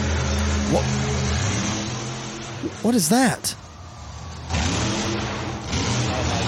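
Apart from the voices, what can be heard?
monster truck engine revving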